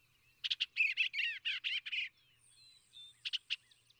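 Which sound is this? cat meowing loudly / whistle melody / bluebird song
bluebird song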